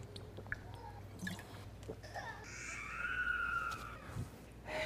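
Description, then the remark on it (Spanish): Quiet sipping and swallowing of water, with small wet clicks and gulps spread across a few seconds over a low steady hum. No one speaks. A speaker pauses a Bible talk to drink a little water. “Disculpen un segundito, me tomo un poquito de agua.”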